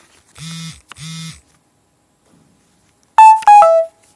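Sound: phone beeping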